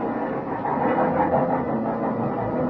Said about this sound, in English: When the train finally pulled in, they walked me down to my car and stood there with me in the vestibule until the train was ready to pull out.